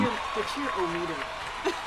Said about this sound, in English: If I had an applause button, I would hit it right now. I'll edit it in.